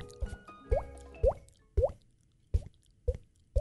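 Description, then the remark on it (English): Seven hollow, water-drop-like plops tapped out at a steady pace, each with a quick upward-bending pitch, made by a person hitting their own head rather than by real water; fairly clear, no talking. “Did you know that I can make the sound of a water drop with my head by hitting it with my”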